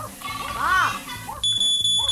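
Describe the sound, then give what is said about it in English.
A smoke alarm begins sounding midway, a loud, shrill high-pitched tone that holds steadily to the end, following a voice calling out with a rising and falling pitch. “I think something's burning in the kitchen.”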